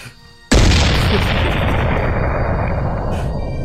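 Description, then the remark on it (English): A single loud cannon boom from a 21-gun salute bursts in after a moment of quiet, then rolls into a long, heavy rumble that slowly fades. There are no voices. “The cannons are a little bit closer to... Joe, do you hear that?”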